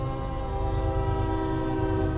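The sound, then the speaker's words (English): A train on the track beside Lilburn Park sounds its horn in a long, steady, harmonic blast over the low rumble of rolling rail cars, heard from the park's parking lot, loud, with no voices. “I'm getting ready to leave Lilburn Park's parking lot, and I hear a train.”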